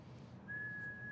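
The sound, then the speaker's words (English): A person whistles a single steady, sustained note that starts partway in and holds to the end, clear over a low background hum. “Stop whistling!”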